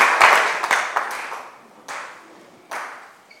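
An audience at a church service claps for Jesus as they take their seats, a dense, bright burst that quickly thins out, leaving a few scattered individual claps trailing off near the end.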